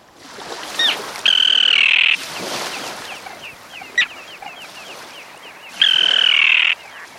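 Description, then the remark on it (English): Two loud, harsh, drawn-out common tern calls, each lasting about a second, over a busy background of fainter, repeated calls from other terns. “The common terns you're hearing have long pointed bills they use to catch small fish.”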